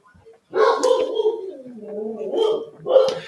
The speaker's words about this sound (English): At your house, we got a dog barking, as I can tell.